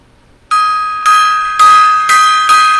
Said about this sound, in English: All right, gong time there.